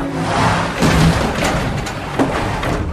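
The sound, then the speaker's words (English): A cab careens into a metal dumpster in San Francisco with a loud, rumbling impact, followed by a few heavy thuds and clattering over about three seconds of noisy commotion with no talking. “He takes his eyes off the road for 1 second to clean it up and careens into a dumpster.”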